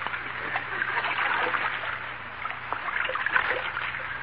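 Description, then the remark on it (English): Water swishes and trickles steadily as a canoe pushes off and is paddled along, with soft splashes rising and falling and no voices. “Shove off, Admiral.”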